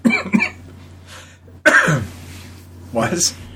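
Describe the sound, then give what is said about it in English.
Several harsh coughs burst right against the microphone, loud and close, with short pauses between them and a throaty clearing sound near the end. “Cough in my fucking ear.”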